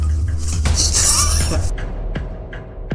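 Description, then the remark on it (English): Bright, crisp clinks and a brief shattering burst of glassy tinkling, followed by a few scattered sharp taps as fragments settle on a stone floor, fairly loud. “You hear this almost like glass tinking on the stone floors.”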